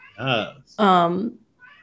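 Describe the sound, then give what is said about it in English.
A pet cat meows loudly twice in quick succession, the second cry longer and more insistent, with no talking over it. “sorry, my cat is now here and screaming at me.”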